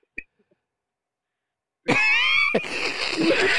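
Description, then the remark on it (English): A man lets out a loud, strained yell after a near-silent pause, his raised voice breaking and trailing into rough, harsh shouting that carries to the end. “This dude yelling right now.”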